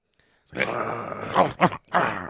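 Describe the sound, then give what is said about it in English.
A man's voice growls and then lets out a few short, gruff yaps, imitating little dog barks, fairly loud with brief pauses between the bursts. “but then to break it up, he does like these little dog barks.”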